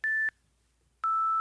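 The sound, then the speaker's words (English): Two electronic beeps from a timer used to time answers: a short steady tone, a pause of about a second, then a second tone at a slightly lower pitch that holds on. Clean, loud, with no talking over them. “And the beeps sound a little bit something... like this.”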